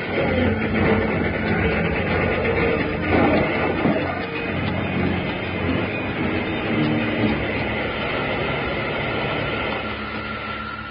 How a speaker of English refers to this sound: The engine plunged toward it, too late to avoid a crash.